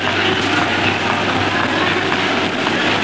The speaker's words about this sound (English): This is Richmond Station.